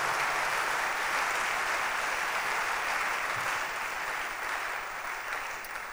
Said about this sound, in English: Oh, your hand clap is very weak.